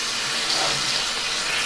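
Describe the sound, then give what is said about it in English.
Steady rush of water pouring from a bathroom sink faucet, a continuous hiss with no pauses, running alone without any voices. “Sorry for the water.”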